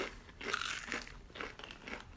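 A crisp crunch of biting into a breaded plant-based chicken patty, followed by a few loud crackling chews in an uneven rhythm, with no talking.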